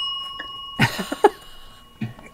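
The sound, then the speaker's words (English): A four-minute timer bell, marking the end of a speaker's time, rings with a steady, sustained metallic tone through the whole moment, overlaid by a few short, louder bumps or muffled sounds. “Tonight, bring your questions to Linda and the 4-minute bell.”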